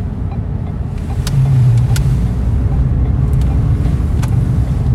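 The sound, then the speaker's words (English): A few cars passing on a street: a steady, loud low rumble of engines and tires, swelling as one vehicle goes past, with no voices. “There's a few cars out here.”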